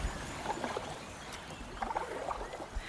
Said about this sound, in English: After those first riffles, we float on a serene and glassy surface, only the sound of our paddles gently pushing us forward.